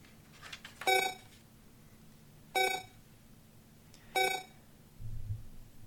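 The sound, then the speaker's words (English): A video game timer beeps three times at a slow, steady interval as it starts on a mini-puzzle, each tone short, bright and electronic, over a quiet background with a brief low rumble near the end. “Timer started.”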